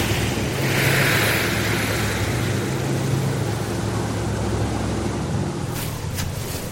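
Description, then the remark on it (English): A boat's engine rumbles steadily as it approaches over the sea, with a broad wash like wind or surf, a low droning motor holding constant, and brief sharp crackles near the end. “There's the boat.”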